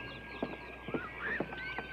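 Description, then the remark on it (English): Buzzards calling at a lake in a quick series of harsh, nasal cries, about five close together, loud over a steady low background hum. “Birds. They're everywhere. You hear them? Damn buzzards.”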